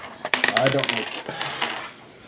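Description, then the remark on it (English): A handful of dice, rolled for a stability check in a tabletop game, clatter and tumble across a hard tabletop, a quick burst of sharp clicks and rattles that settles within a couple of seconds. Fairly loud, with no talking. “All my dice are in the center of the table.”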